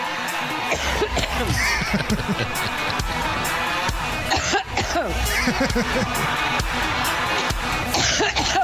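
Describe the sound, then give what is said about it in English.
A large crowd coughs loudly all at once, with dense overlapping coughs and throat-clearing bursts rolling on for several seconds. “Little thunder cough in honor of Pantsuit Patty's birthday.”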